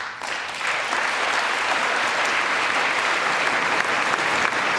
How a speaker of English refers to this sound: They were met with applause and a standing ovation at the State of the Union address last night.